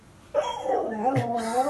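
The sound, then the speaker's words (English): A dog whimpers in high, wavering whines, broken by a short sharp yip partway through, continuing fairly loudly for over a second after a quiet start. “Ragnar, you have to stop it.”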